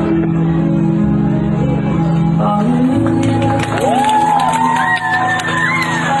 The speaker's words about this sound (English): All of the moms just clapping, and you can see all of the dads are just not sure what to do.